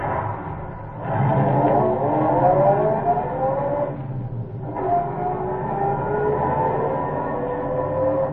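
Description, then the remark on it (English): After the carburetor is cleared and the starter pressed, a car engine turns over and revs up loudly, then steadily accelerates as the car pulls away along a desert road, the motor's pitch rising in repeated sweeps with no voices. “And he took his few minutes and cleared the carburetor, stepped again on the reluctant starter.”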